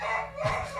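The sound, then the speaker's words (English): A beagle, Gunner, lets out a brief, shrill squealing bark, a single high-pitched yelp lasting under a second, loud, with no voices over it. “That's he does that beagle squeal.”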